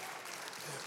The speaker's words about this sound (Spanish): Si le va a dar fuerte ese aplauso, dáselo fuerte, por favor.